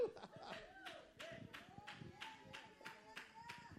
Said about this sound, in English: I got one clapping. Some of y'all need to quit being intimidated.